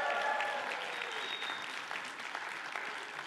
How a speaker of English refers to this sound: Come on now, that's pretty exciting. That was not that good of a cheer right there. Come on, like that.